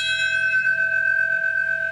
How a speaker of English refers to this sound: As the years have passed through 4 presidents, the bell still tolls, marking the exact times the planes hit and the towers fell.